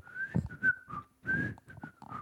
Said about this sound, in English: I can't whistle. It's not bad. It's bad. I can't whistle at all. I can't even get any wind out of there.